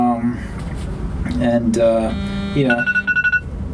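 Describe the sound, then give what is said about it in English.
An electronic timer goes off, signaling a commercial break, with a rapid, evenly pulsed string of bright, ringing beeps, rising over people talking and sounding loudest near the end. “No, that's the timer to say that it's time for a commercial break.”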